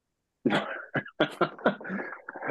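A short fit of coughing up close: a strong first cough followed by several quicker, rougher hacks in an uneven rhythm, with no talking in between.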